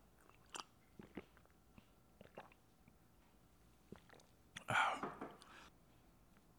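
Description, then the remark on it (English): Someone eating a broccoli salad: quiet, scattered crunchy chewing clicks, then a louder burst of crisp crunching and wet mouth sounds near the end, with no talking. “This is a salad that improves vastly as you get near the bottom of the salad and all of the large pieces of broccoli are eaten up, leaving only the tiniest bits.”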